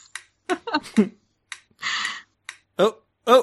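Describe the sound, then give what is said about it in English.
A spinner app on an old Android phone makes a sparse run of sharp, typewriter-like clicks, fairly loud, with brief voiced sounds and a short hissy burst between them. “The old spinner on my Android phone. It's so old. You're basically using a typewriter for a spinner.”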